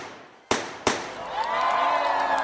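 Two sharp, loud gunshot bangs, fired from bushes in the dark, ring out less than half a second apart. Their echoes fade into a sustained, noisy wash with a faint steady whine underneath.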